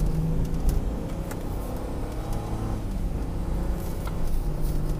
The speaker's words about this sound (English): Oof, you hear that? If you hit the gas a little too quickly on this car, you get that old that wind up car sound, that high pitched engine whizzing. Can't be good.